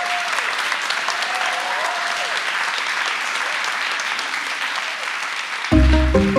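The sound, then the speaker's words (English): An audience applauds the speakers after a question session, clapping in a steady, dense round for several seconds, a few cheers or whistles rising above it, before music abruptly cuts in at the end. “Can you join me in giving these excellent people a round of applause, please?”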